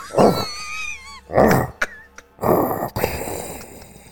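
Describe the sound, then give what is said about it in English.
A person imitates a dog's growl with three harsh, gravelly vocal bursts, fairly loud, separated by brief pauses, the last one trailing off into a rough rasp. “Like people come over and your dog comes out like, rough.”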